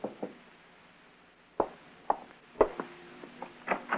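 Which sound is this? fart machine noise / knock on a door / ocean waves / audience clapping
knock on a door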